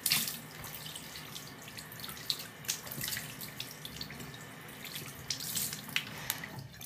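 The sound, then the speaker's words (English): A faucet runs steadily while water splashes irregularly as hands scoop it to rinse a face after washing. No one speaks. “I usually put some water on it and then pat it dry anyway, so more water.”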